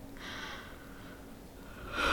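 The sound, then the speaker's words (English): A person yawns: a sharp, airy intake of breath like the start of a yawn, followed by a quieter breathy stretch and a second rushing inhale at the end; no speech. “I mean, yawns are contagious here in podcasts, but my chest is just, you know, being a bit weird.”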